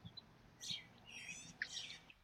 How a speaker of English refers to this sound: I heard two distinct bird calls, one more song-like, and one was more of a chirping, but I couldn't see the birds and I wasn't really able to identify their calls.